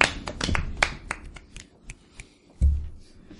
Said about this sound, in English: One-handed claps.